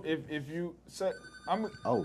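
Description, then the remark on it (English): A telephone rings for an incoming call from a listener phoning in to a live radio call-in, a steady electronic trill starting partway through and continuing to the end, with someone talking over it. “Call her, you on the air.”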